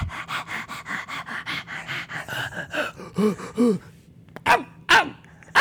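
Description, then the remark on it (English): A person imitates a dog, with quick, rhythmic panting breaths for a few seconds, then a couple of whiny yips and three sharp, loud barks. “would you say you have that dog in you? I got that.”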